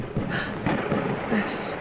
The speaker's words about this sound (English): Now to see who is capable of summoning such a storm.